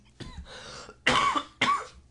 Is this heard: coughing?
yes